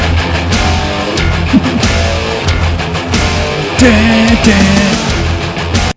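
Loud, dense entrance theme music for the wrestler Crush, with a driving beat and sustained tones, drenched in reverb and playing steadily without any voices before cutting off abruptly at the end.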